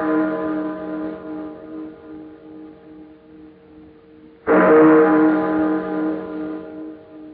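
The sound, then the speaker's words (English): Church bell chimes ring late on Christmas Eve: a deep, resonant ring that hangs and slowly fades, then strikes again louder, its chime swelling and lingering. No voices are heard. “I've been caring for these chimes nearly 20 years now. And this is the first time I ever know them to ring late.”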